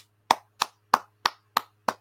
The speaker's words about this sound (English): Clap it up for my guys, man. Phenomenal host today, man. You guys did a phenomenal job.